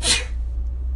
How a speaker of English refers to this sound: Gesundheit!